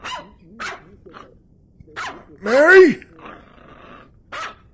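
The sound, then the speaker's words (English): A dog barks several times in short bursts, with one louder, drawn-out bark near the middle; a person briefly calls out between the barks. “What is that dog barking at?”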